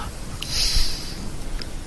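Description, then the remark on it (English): Someone imitates snoring with their voice: a rough, rumbling, breathy snort that drags on for a couple of seconds at moderate volume, with no talking. “You hear snoring.”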